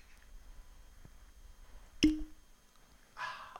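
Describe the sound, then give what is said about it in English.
A sharp glassy clink rings briefly, then a short splashy rush of whiskey pours into a glass, quiet, with no talking. “I'll get on quickly now because the whiskey's been poured.”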